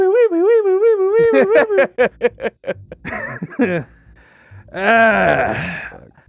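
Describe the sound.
A voice imitates a police siren with a rapidly wavering, warbling high-pitched wail, then breaks into quick choppy pulses before a second, rougher warbling burst.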